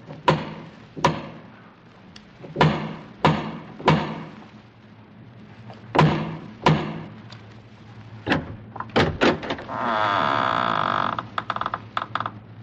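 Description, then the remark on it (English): Heavy, resonant knocks pound on a massive wooden door in several irregular clusters, then a longer grinding creak follows as the door seems to shift open. “strode across the gravel and up to the massive wooden portal, the door of the House of Usher”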